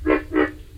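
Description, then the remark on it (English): Two deep, grunting croaks from a pig frog, recorded in Everglades National Park, Florida, evenly spaced and fairly loud, each a short rough pulse like a pig's snort, with no voices present. “And that's the pig frog.”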